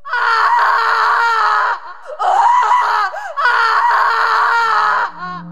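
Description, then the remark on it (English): A woman lets out three long, piercing, blood-curdling screams from her throat to her diaphragm in an empty parking lot around 6:40 to 6:45 p.m. Each is loud and strained at full force, with short breaks between them and no talking. “Have you ever heard a woman not just scream, but she is screaming straight from every inch of her throat to her diaphragm?”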